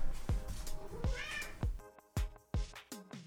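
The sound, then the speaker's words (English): A cat named Leo meows loudly and insistently, a rapid string of short, strained cries, one rising into a drawn-out yowl, with brief pauses between calls. “Leo was really meowing really loudly, so I had to kick him out.”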